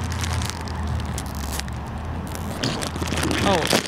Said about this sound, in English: Oh, there you go. He opened the chips, and we heard it live.